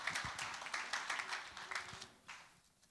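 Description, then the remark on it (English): A crowd claps for a young man in a red jumper who has come up to help, a quick, dense patter of many hands, fairly soft overall, tapering off toward the end with a few last scattered claps. “Let's give this young man a round of applause as well.”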